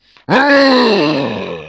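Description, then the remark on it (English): A person voices an orc's guttural, furious scream of anger after a spear grazes its ribs: one loud, sustained, rough roar that starts abruptly after a brief soft breath and slowly sags in pitch as it fades slightly. “What happens is he ends up grazing his ribs, causing a little more than just a scratch and infuriating the orc, who lets out an enormous guttural scream of anger and fury.”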